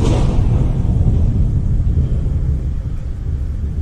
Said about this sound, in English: Okay, you can hear automatically underneath his speech a storm.